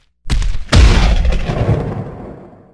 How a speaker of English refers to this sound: Shoot! A lightning bolt! Who did that?